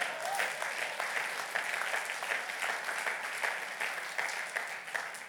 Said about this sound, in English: Come on, that deserves a clap.